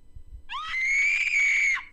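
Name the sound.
woman screaming loudly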